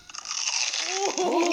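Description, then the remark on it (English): Loud crunching of crisp food being bitten and chewed, a steady run of dense crackly crunches lasting about a second and a half. “I love when she eat the crunchy shit, y'all.”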